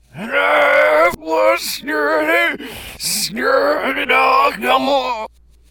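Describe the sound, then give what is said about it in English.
A voice imitates anguished, ghostly shouting and screaming: about six loud, strained wailing cries in quick succession, separated by sharp gasping breaths, intense. “And you hear what sounds like completely anguished shouting, screaming, if you will.”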